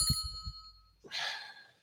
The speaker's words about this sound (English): So, and I will try to ring the bell.